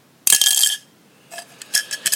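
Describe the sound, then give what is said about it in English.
A bright glassy clink rings out sharply, followed by a few lighter tinkling taps and small bounces as a pin settles inside an empty glass. Clear, no voices. “Or it wasn't actually a contact lens. It was a pin dropping in.”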